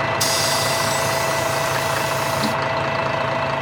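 A bus engine rumbles steadily as the bus arrives, idling with a low, knocking drone, while a loud airy hiss runs for a couple of seconds before cutting off. No one speaks.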